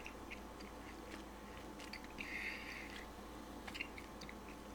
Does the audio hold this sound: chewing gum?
yes